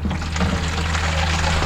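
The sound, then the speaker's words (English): Water pours steadily into a watering can, a continuous, fairly loud splashing rush with a low hollow hum underneath, lasting throughout with no voices. “It's it just puts the water exactly where you want it to go.”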